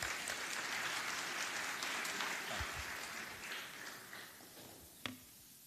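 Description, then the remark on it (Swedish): Audience applause at a 50th anniversary celebration, welcoming a guest speaker from Finland: a dense steady patter of many hands clapping that gradually thins and fades, ending with one sharper knock near the end. “En applåd.”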